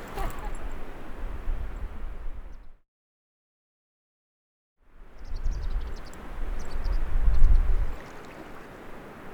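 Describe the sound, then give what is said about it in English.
Steady, hissing roar of waterfalls and lake water with a deep rumble underneath. It drops out to silence for about two seconds midway, then returns louder, with faint chirps flickering above. “Just the waterfalls around us, and that's about it.”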